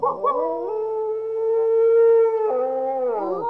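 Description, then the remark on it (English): A single long wolf howl, sustained and tonal, holding a steady pitch before bending and sliding downward at the end, with no voices. “Such a creature as the wolf, however, was never going to go gentle into that good night.”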